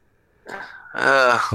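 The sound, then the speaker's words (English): A single loud sneeze: a breathy, noisy burst that breaks into a strong voiced, high-pitched exclamation, with no other talking during it. “Bless you.”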